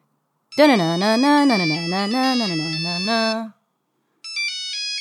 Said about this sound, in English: On one evening, I was annotating my AP US history homework, and now my blue Nokia cell phone ringer goes off.